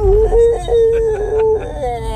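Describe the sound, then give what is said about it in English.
A voice imitates a drawn-out animalistic whimper, a loud, wavering whine that rises and dips for about a second and a half before trailing off, with a low rumble underneath. “He basically kind of gives an animalistic whimper.”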